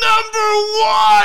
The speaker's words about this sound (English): So now you want to scream in my face.